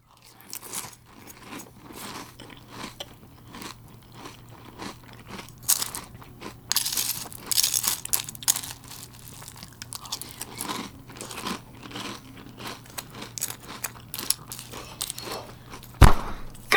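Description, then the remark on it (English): Loud, wet open-mouth chewing and crunching, a steady run of crisp bites and smacking mastication with no talking, ending in one sharp crunch. “Chew with your effing mouth closed. Have you ever been in a situation like this or heard about one?”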